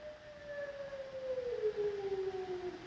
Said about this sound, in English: Then the wolves start howling, and we get that classic line.